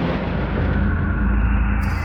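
A thunder clap rolls out as a loud, deep rumble that holds steady for about two seconds, heavy in the low end with no sharp peak and no voices.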